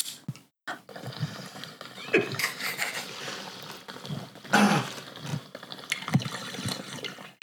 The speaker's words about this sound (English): Oh, I just did a loud hit. I'm sorry. Okay. I'm going to take a bong hit.